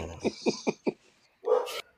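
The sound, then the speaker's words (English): A dog barks four times in a quick, even rhythm, then lets out a longer, louder bark or growl, clear with no talking. “My dog's not happy about the ending either.”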